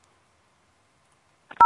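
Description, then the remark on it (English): Near silence, then a short click and a loud, steady, mid-pitched electronic voicemail beep on the Cannabis Action California answering message that starts abruptly and holds until the end. “If you would like to leave a message for one of our team members, please do so at the beep.”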